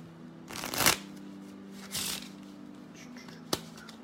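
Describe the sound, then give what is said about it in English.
A deck of tarot cards being shuffled: a long riffling burst, a shorter second pass, then a sharp tap as the deck is squared, over a faint steady hum. “Let's get you a nice shuffle. Let's get you a good, solid shuffle.”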